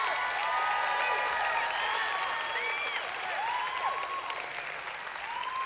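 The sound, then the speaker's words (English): A crowd applauds steadily for several seconds during a sermon, a dense, even wash of many hands clapping, with scattered high whistles and faint cheers rising above it. No one speaks over it. “Did I hear a hand clap in the back?”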